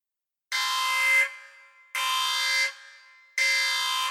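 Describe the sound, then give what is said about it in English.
A loud, piercing alarm on a space train blares in three long bursts, each about three-quarters of a second, separated by brief gaps where the tone fades. The rhythm is steady and harsh, with no voices. “The cadets ran to the cockpit as an alarm shrieked through the space train.”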